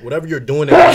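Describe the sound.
A man talks briefly, then a sudden, loud sneeze bursts out, cutting across the end of his sentence.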